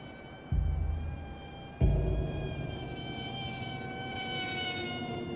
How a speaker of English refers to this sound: Or the mosquito buzzing around as he tries to sleep.